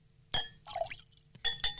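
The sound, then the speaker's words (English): Wine, a 2019 Woodside Pinot, glugs briefly into a glass between bright glass clinks, a ringing tap at the start and two more near the end, fairly quiet, with no voices. “You can keep talking while I'm pouring.”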